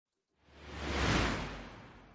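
A single airy whoosh sweeps in, swells to a loud peak near the middle and then tapers off slowly, like a transition sound effect, with no voices.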